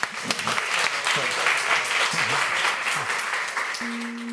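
A crowd applauds steadily for a speaker being introduced, a dense wash of clapping hands with scattered voices and cheers mixed in, holding a fairly even level for several seconds before a low tone enters near the end.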